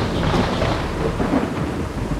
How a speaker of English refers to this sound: However, as the night went on, the sky opened up. A torrential downpour of rain sent power circuits into overdrive. The rental property lost power.